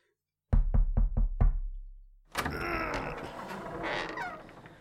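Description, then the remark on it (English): Five quick, loud knocks land in a steady rapid rhythm, then a brief pause gives way to a stretch of busy, noisy commotion. “I know when I hear the knock to say the announcements.”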